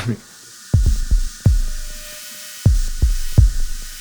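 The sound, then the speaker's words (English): A deep drum and bass groove: heavy, booming kicks hit in a broken, syncopated pattern while a steady wash of sidechained white-noise hiss pulses softly behind them, with no voices. “The white noise is really sidechained to the sun. This sounds so nice.”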